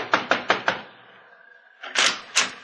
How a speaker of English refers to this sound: Knock on the door, Mr. Val.